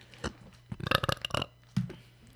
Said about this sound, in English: I burped a solid one, and y'all didn't catch it. Oh, you got to warn us. It was solid.